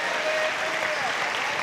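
A large audience claps hands in praise to the Lord in a dense, sustained wash of applause, steady and fairly loud throughout, with faint voices blended into the crowd noise.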